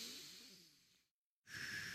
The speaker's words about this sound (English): Just do long exhales because singing is exhaling. Like 10-minute or 10-second breathe in, 10-second breathe out? Yeah, and I try to hold it. I try to like go as long as I can.